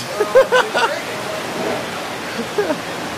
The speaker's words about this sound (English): And pissing down, and it's raining. It's pissing down rain.